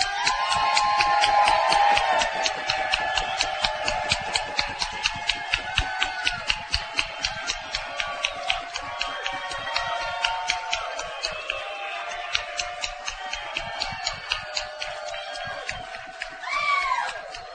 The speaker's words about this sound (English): Because tonight we're going to honor one of the most terrific men and players in the history of professional football. We lost him way too soon, because tonight we are going to honor and give a cheer for the late Buck Buchanan.